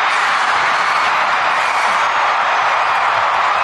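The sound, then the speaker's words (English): A crowd of 80,000 plus at Stadium Australia roars and cheers after Steph Catley's penalty goal for the Matildas against Ireland at the World Cup, a dense, loud, unbroken wall of noise that holds steady for several seconds with no individual voices standing out. “And sends the majority of the 80,000 plus inside Stadium Australia into rapture.”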